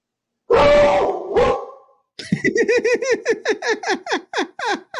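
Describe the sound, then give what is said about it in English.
A dog barks loudly, two harsh barks followed by a quick, rhythmic string of about a dozen higher yapping barks, with no one talking. “Oh, this dog.”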